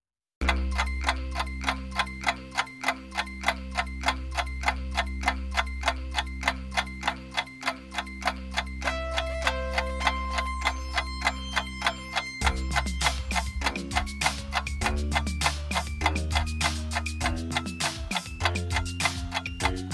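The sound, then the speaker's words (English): A steady, brisk clock tick runs the whole time over a pulsing musical countdown bed, counting down to quiz answers, with a low bass note throbbing beneath; the music grows busier partway through. No one speaks. “We are going to count down to those answers now.”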